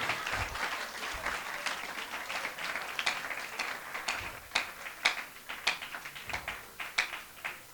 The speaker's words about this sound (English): Only these people are clapping plenty.